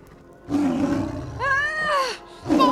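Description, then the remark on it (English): A saber-tooth tiger roars loudly: a rough, rumbling growl, then a higher wailing snarl that rises and falls, and another deep roar starting at the end. “That any scenario that ends with me getting snatched by the ravenous jaws of a saber-tooth tiger is highly...”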